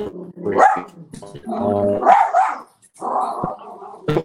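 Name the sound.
small dog barking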